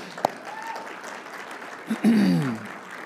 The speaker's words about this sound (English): So maybe a round of applause. I don't know, feels appropriate.